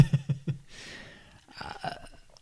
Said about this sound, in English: Your burps are worse than my.